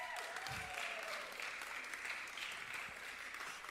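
A crowd claps steadily in a dense, continuous burst of applause that stays loud and even for several seconds, with a few faint whoops rising over it.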